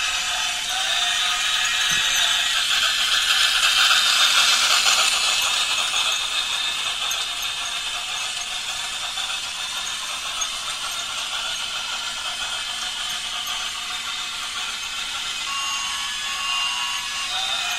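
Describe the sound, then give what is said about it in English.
A model train with a cow catcher on its engine runs steadily along its track around a tree, giving a continuous high, rattling mechanical whir that swells slightly early on and then holds even throughout, with no voices. “And I'm going to let it run for a minute or two so you can hear the sounds and stuff.”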